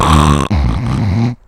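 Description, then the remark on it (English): A voice loudly imitates a sleeping man's snoring with two harsh, rasping, throaty snorts, the first cutting off abruptly before a longer rumbling one, forceful. “Like, you hear snoring, and you're like, oh, that guy snores.”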